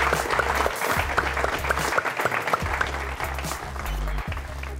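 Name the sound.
audience applause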